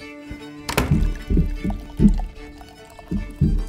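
Loud, heavy stomping footsteps of a small boy who has just woken up, a string of deep thuds in an uneven rhythm, with a sharp bang at the start and steady thumping after that.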